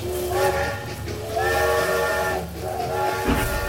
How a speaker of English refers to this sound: We tear up the hill, seeing the lights of the train car through the trees. They're moving. The blasts of the train horn punctuate the rhythmic, mechanical chuff of the steam engine.